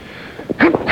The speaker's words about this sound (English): Oh. I'm about to sneeze.